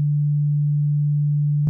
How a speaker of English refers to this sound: And that's two sine waves playing the same note.